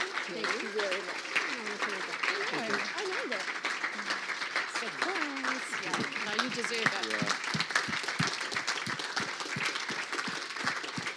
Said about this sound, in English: I just think it'd be awesome for us to just stand to our feet and just clap for this incredible couple that have sowed years and years into this church.